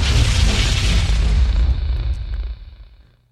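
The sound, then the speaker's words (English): A quick explosion sound effect: one loud, deep boom with a brief crackling burst that rumbles and fades out over about three seconds. No voices. “Gun check. Gun rack. Gun cocking. Quick explosion.”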